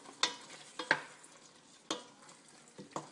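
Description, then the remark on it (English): A utensil scrapes and knocks through a pan of curry chicken sizzling on medium heat as it is stirred, with several sharp clacks at irregular intervals over a steady low frying hiss. No one speaks. “So let me just stir that through.”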